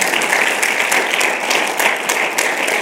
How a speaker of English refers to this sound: And of course, I have to give a huge shout out to my wife of now in November, 30 years, y'all. Give her a hand clap.